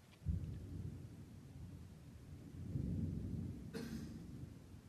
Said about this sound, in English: I didn't hear it because of the thunder. Oh, because of the thunder.